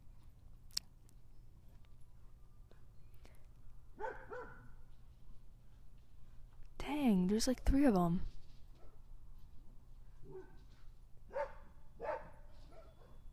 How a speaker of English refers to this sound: There's another dog. They're all just speaking today. I wonder what they have to say.